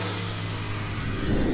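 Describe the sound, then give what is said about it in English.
A race car engine rumbles loudly in a steady, buzzing drone that shifts slightly near the end as the car slows and stops on pit road, with no voices. “The car stops on pit road.”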